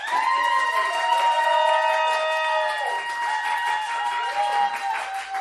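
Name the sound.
audience applauding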